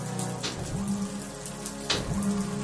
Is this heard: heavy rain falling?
yes